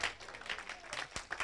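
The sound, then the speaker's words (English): A crowd claps hands together in praise of Jesus, a dense, steady burst of applause, sustained throughout, with a few louder individual claps standing out near the end. “Can we give a quick hand clap of praise to our lover and our Lord?”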